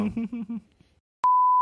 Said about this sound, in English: Beep.